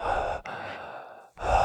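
Heavy, close-up breathing: loud, airy breaths pushed right against the ear, one long exhale, a brief pause, another drawn-out breath, then a third starting, with no talking.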